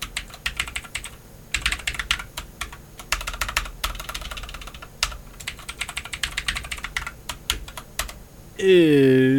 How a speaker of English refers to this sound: Hey. What? What? Hold on. What are you doing? Sounds like you're typing in a questionnaire.